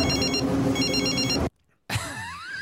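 A telephone bell rings loudly in two close bursts of rapid trilling, then cuts off abruptly into a brief silence before a different warbling sound begins.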